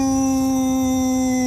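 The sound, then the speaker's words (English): An angry Indian bison lets out one long, steady bellow, a loud sustained tone with a firm, unwavering pitch and rich harmonics that fills the whole moment, with no talking. “The buffalo is angry.”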